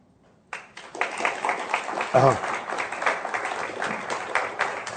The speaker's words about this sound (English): Thank you for remembering to applaud. It took you a second over there, and I was starting to doubt myself.